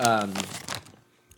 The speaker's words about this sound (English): I like these more, I think, than just a Reese's cup. I like the crunch from the cracker.